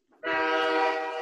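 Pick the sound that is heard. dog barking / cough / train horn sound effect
train horn sound effect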